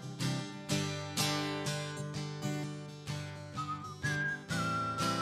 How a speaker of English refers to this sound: Whistle solo.